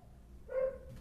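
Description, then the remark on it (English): A single short, tonal bark or yelp from a dog at an animal shelter rings out over a steady low rumble of traffic from cars heading towards Claremont, with no voices. “If you were to listen carefully, between the sound of music from the cafes and the sounds of cars going towards Claremont, you can hear the dogs.”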